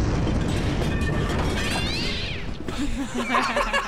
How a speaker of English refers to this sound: I told you I was going to add a cat sound at the end of the explosion.